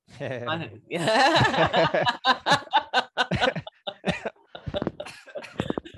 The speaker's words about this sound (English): Sorry, I got you coughing. I don't mean to.